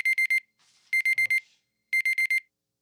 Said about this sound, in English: Oh, shit. All right. Had my alarm going off.